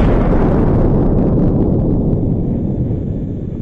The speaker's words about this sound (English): I feel like at this point I should have some sort of explosion sound. I'm here. The blow-up guy is here.